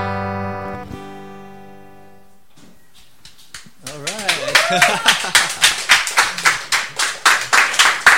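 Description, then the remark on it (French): A sustained musical chord ends a new song, then a small bar audience breaks into steady, loud applause, with sharp claps repeating in a quick rhythm and a brief vocal whoop rising over them. “Du bar applaudit présentement.”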